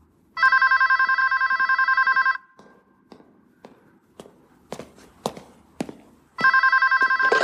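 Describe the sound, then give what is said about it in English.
A telephone bell rings in two long, trilling bursts separated by a pause as a man calls a woman back, with a few scattered footsteps and thumps in between. Nobody speaks. “He tries to call back Marion. Right. To actually go and consummate that whole offering. And then Carl answers the phone.”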